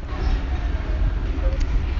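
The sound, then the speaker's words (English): A train pulls out of a station in Multan, bound for Rawalpindi, with a steady, heavy low rumble and faint rattling, a continuous mechanical drone filling the background for a couple of seconds. “The train is now leaving.”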